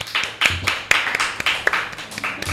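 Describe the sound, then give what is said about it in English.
A crowd in a small room claps in a loose, scattered burst when asked to clap if they are a bottom, many overlapping hand claps with a few sharper ones standing out, moderately loud and steady for a couple of seconds, with no one talking. “Clap if you're a bottom.”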